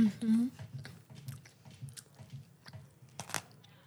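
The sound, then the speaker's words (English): Steady chewing of a crunchy peanut butter sandwich with a bit of added saltiness, with irregular crisp crunches and mouth clicks over several seconds, opening with a short hummed murmur from the eater. “It's just a peanut butter sandwich with a crunch and a bit more saltiness.”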